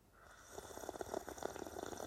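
A drawn-out, noisy slurp of tea, airy and gurgling, swelling in loudness over about a second and a half, with no one talking.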